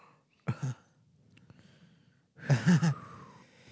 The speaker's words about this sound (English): Oh, fuck. Bless you. Bless you, friend.